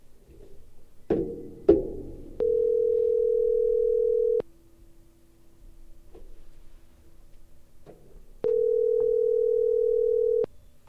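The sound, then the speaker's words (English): A couple of clicks, then a phone ringback tone: two steady electronic buzzes about two seconds long, separated by a few seconds of quiet, clear with no talking, while calling a friend's phone number. “All right, it's ringing.”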